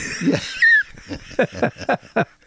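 A raspy run of coughing: a strained, wheezy intake at first, then five or so short, harsh hacks in quick succession, fairly loud, with no talking over it.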